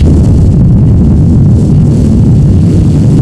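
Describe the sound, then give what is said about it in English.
Loud, steady low rumble of wind buffeting through the broken window of a car that had been broken into, heard while driving home in freezing January weather, a deep throbbing roar with rapid irregular pulses that never lets up, no voices. “Okay, first of all, just hearing that, you guys ever drive a car in the uneven windows? That nasty noise is happening the entire drive.”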